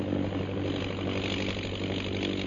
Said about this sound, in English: And the plane's heading south, Lil. Looks as though they're going back to the pass.